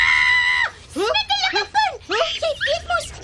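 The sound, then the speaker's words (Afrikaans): Harsh, high-pitched screeches from parrots: one long sustained squawk followed by a rapid series of shorter chattering calls, fairly loud. “Ja, hoor hoe skree daardie papegaaie ook.”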